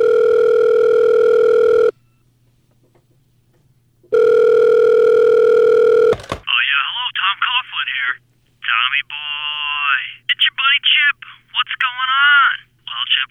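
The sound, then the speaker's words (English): A telephone rings twice in long, steady electronic buzzes separated by a pause, then a high-pitched, sped-up garbled voice chatters rapidly over the line. “this is what a phone call from Chip Kelly would sound like”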